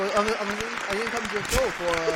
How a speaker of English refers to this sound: So, shout out to y'all, man. Round of applause for y'all being in the building.